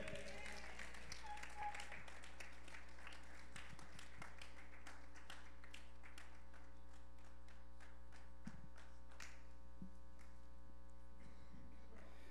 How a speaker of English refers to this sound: Can we get a round of applause for any of our guests today?